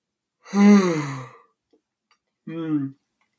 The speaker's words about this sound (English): yawn.